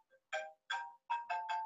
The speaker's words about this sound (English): I apologize if you can hear that, my phone is ringing anyway, and I thought I shut it off.